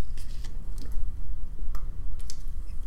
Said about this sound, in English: Excuse me. Yeah, I need a sip of water there.